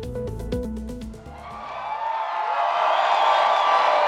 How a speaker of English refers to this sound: Crowds cheer as Denmark's new King Frederik waves from a balcony in Copenhagen after formally taking the throne.